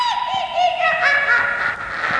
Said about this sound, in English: your chair is breaking. What's happening?